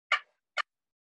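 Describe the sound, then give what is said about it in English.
Two short, crisp turkey clucks made on a box-style game call, about half a second apart, clear with silence around them and no talking. “And then clucks, I just.”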